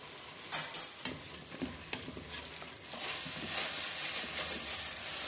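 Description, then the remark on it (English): Chicken for a soup sizzles and fries in a pot with a steady crackling hiss, interrupted by a few scraping stirs of a utensil; moderately loud, with no voices. “So just, I'm going to give that two more minutes, and then what I'm going to do is I'm going to shred it with two forks on a chopping board really finely, and then I can add it to the vegetables.”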